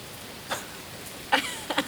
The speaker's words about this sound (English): Now it starts to rain.